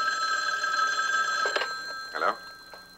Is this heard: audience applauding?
no